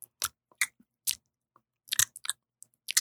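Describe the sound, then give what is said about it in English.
Quiet ASMR mouth sounds: a series of wet, crisp clicks and smacks in irregular bursts, some doubled, separated by short silences, with no talking. “How do we feel about mouth sounds, everybody?”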